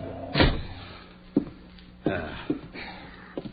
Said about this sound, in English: Kick the door shut.